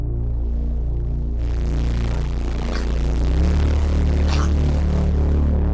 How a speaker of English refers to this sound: It distorts pretty heavily if you go the drive all the way up. What it does very well, better than other plugins or what's unique to it, is if you crank up this fuzz, it creates a kind of a white noise layer. Let's just try this out on this patch.